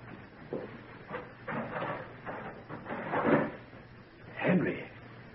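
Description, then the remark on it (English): A door is opened with a series of muffled clunks and scraping rattles, the loudest near the end, over a low steady background hum. “I'm coming now. I'm going to open the door.”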